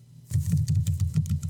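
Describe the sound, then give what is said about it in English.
Rapid typing on a computer keyboard, a quick, uneven run of light clacking keystrokes over a steady low hum, with no one speaking. “I know, I can hear you typing.”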